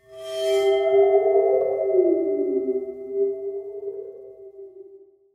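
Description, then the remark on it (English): A water phone, a metal instrument with some water at the bottom that makes its tone wobble, sounds a sustained, eerie metallic tone that bends and wobbles in pitch, with a brief bright shimmer at the start, slowly fading over about five seconds with no voices. “It's a water phone. Water phone, yes. Which is like this metal thing that has some water at the bottom of it.”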